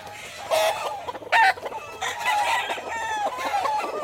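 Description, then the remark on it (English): A flock of chickens on a chicken farm in Georgia in summer clucks and squawks nonstop, fairly loud, their overlapping calls forming a busy barnyard chatter with a couple of sharper, louder squawks standing out. “Have you ever visited the Georgia chicken farm at the height of summer?”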